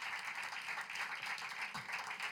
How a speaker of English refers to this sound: Can you give a round of applause for Jesus Christ of Nazareth?